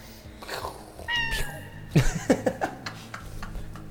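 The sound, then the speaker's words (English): A toy gun plays a synthetic cat meow, a bright tonal squeal followed by a string of short, choppy electronic mews, fairly loud, with faint background noise. “My gun makes a cat sound.”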